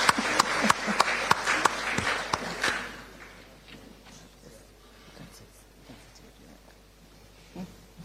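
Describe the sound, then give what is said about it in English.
An audience applauds a professor after his address, with a burst of dense, overlapping clapping for about three seconds, then it quickly dies away into quiet with faint, indistinct voices. “A round of applause for Professor”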